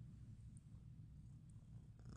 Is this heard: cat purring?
yes